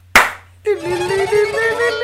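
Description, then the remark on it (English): A sharp, loud hand slap cracks out once, followed by a pause and then a steady, sustained tonal sound with a bright, ringing quality that carries on to the end. “I'll go back two slaps. Two slaps.”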